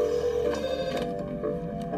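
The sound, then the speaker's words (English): A telephone rings with a steady, buzzy electronic tone that carries on for the full two seconds, fairly loud, with no one talking over it. “During one call, Hernando asks Eppolito to come to Colombia with him”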